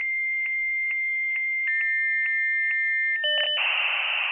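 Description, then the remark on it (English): A dial-up internet modem connects: steady electronic tones pulse and shift pitch for a few seconds, then give way to a harsh burst of hissing static. The sound is loud, with no voices. “Some agents will tell you those haven't worked since the days of dial-up internet.”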